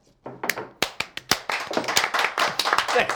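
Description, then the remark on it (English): A few people clap together at the season premiere of the talk show The Point: scattered sharp claps at first, quickly building into a dense, steady round of applause that keeps going to the end. “Applaud if you'd like.”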